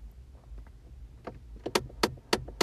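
A car heater starting up: a series of sharp mechanical clicks grows louder and quicker over a steady low rumble inside the car, with no one talking.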